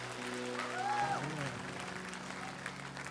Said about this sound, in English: Give the Lord some applause, okay?